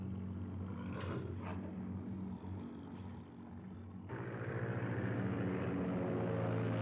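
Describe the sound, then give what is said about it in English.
A biplane's propeller engine in a film scene drones steadily with a low, throbbing hum, swelling louder and rougher partway through as if revving up. No voices are heard. “That's great with the plane.”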